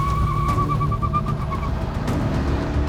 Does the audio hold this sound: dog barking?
no